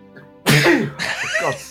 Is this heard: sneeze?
yes